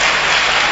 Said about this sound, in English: But I know you will do better. Clap your hands. Clap it well. Clap.